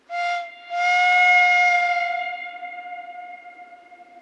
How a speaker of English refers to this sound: Another spooky thing that happens on the 28th of October, it's said that in the evening, you can hear the ghostly sound of the train whistle from the train that sadly killed Stuart.